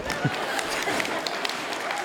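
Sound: audience clapping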